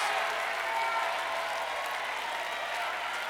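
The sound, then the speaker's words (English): An audience at a church service claps and shouts together, giving God glory, in a steady, dense wash of applause and raised voices, loud and continuous for the whole stretch with no single voice standing out. “Y'all shouting like you don't believe your needs are gonna get met.”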